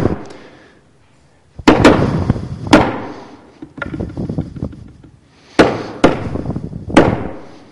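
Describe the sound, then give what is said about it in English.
A hand pounds a wooden pulpit in loud, booming thuds, roughly seven irregular strikes in clusters, each trailing a resonant rumble like thunderclaps. No one speaks. “And I'm going to hit the pulpit.”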